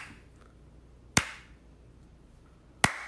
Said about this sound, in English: This is my slow clap. I appreciate you making dinner, seriously.